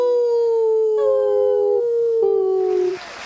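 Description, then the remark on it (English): Long, sustained howls drift slowly downward in pitch, with a second and third howl joining in at once to form a layered chorus that fades out near the end. No talking. “What could be better than good friends getting together to make beautiful stories and beautiful noise? Happy Howl-a-days!”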